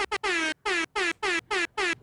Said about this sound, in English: But bro, it's not even, that one was a good horn sound effect